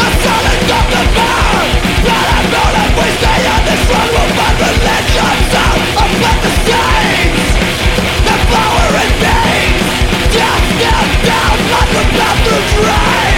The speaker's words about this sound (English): The record is kind of short, although it does end on a track that has 4 minutes of them just shouting ape.